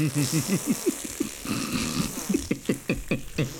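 A lever pull on a movie machine gives off a long, wet, sputtering fart-like noise: a rapid run of low, buzzy flapping pulses lasting a few seconds, fairly loud, with no talking.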